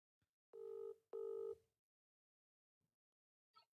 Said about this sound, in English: Let's ring him on the podcast. All right. Ring him. Ring him up. See what he says. Hold the phone up to the... Yeah, I will.